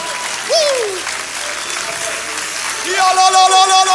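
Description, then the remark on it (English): An audience claps hands in a dense, steady wash of applause, with voices calling out over it and a sustained organ-like tone entering partway through. “Can you clap your hands?”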